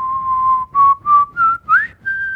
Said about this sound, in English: I was whistling there. Oh, I could not hear that. I could if we were using clean feed, but...